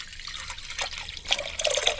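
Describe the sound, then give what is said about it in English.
Water pours steadily into a container for a couple of seconds in a water-volume judging challenge, a bright splashing trickle that grows a little fuller and louder toward the end, with no voices. “Commence the pour!”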